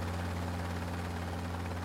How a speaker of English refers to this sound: The helicopter jumped 1,000 feet, straight up into the air, just before the temple crashed on the spot where we had been.